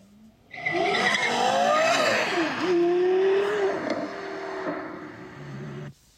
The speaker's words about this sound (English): I'd much rather be driving the Carrera GT. I mean, this is a car that literally sounds like an F1 car.